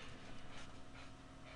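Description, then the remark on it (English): A dog named Herbert pants quietly in the background, a steady run of quick, breathy huffs with a soft rhythmic pulse and no voices. “You can hear Herbert panting in the back.”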